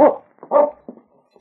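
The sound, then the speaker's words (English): A sled dog named King barks several times in quick, uneven succession, fairly loud, with a short whimpering yip trailing off at the end. “I got my dog team, and King and I'll pick up his trail and bring him back.”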